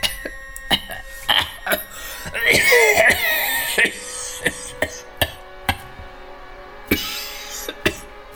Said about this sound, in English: He coughed long and loud.